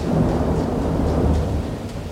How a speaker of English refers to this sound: a lot of heavy rain. Probably one of the top five nights in my life of thunderstorms.